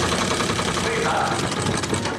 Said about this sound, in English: Christine's delighted to have a live-in dressmaker, while Justin is driven crazy by Lieber's antique sewing machine. What is that?